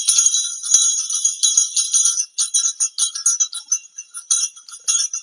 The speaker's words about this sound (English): Show you some things I worked on. I worked on my bells. I fix them for my ceremonial bells that I use when I'm in ceremony. I fix them.